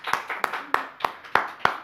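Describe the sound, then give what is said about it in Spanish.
A church audience claps hands in unison in praise of the Lord, sharp even claps landing about three times a second in a steady rhythm, moderately loud with no talking over them. “Vamos a dar palmas al Señor por eso.”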